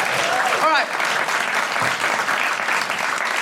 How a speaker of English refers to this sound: Bigger applause